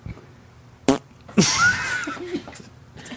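A short, sharp burst is followed by a longer, raspy fart with a squeaky tonal rise, loud and close, then trailing off with a brief sputter near the end.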